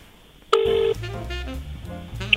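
A click and then a single steady telephone tone, loud, lasting under half a second over a faint background hum, followed by softer, muffled tonal sounds, as a phone call is placed to a co-host.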